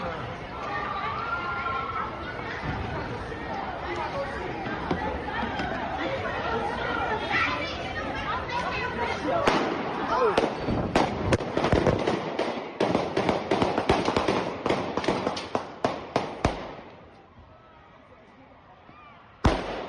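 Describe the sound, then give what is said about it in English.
Rapid gunshots from multiple shooters crack out in dense, overlapping volleys over a noisy crowd on South Street in Philadelphia, a busy area with many bars, dozens of sharp bangs in quick succession before the firing stops and the scene falls quieter. “Take a listen to some of the sounds of the gunfire because there were just so many shots ringing out.”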